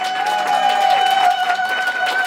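A crowd screams and yells in one steady, loud burst that holds for a couple of seconds, with shrill high voices rising above the dense roar.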